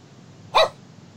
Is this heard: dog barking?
yes